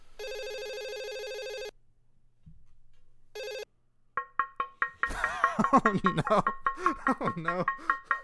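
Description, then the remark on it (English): An outgoing call's ringback tone sounds once for nearly two seconds, pauses, then starts again briefly before the line cuts to a busy flurry of quick, chirpy sounds. “It's ringing.”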